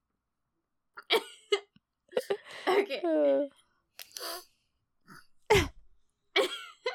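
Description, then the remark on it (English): Several short nasal sniffles come in quick bursts, some with a thin whistling squeak, separated by brief pauses, with a person briefly speaking between them. “I'm just trying to breathe. Your squeaky sniffles.”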